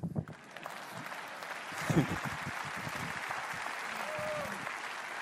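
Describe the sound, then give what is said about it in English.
A crowd breaks into steady applause, a dense wash of clapping that swells and holds at a fairly loud level for several seconds, with a few scattered voices underneath. “That's where you clap.”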